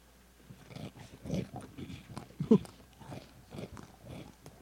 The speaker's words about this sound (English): Crunch loud. It's crunching into the mic.